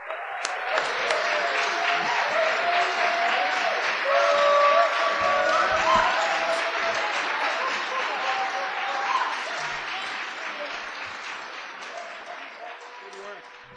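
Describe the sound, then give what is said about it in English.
Sustained audience applause calling for an encore: a dense, steady wash of clapping with scattered cheers and whistles riding over it, staying loud throughout and easing slightly toward the end. “That applause led to an encore, of course”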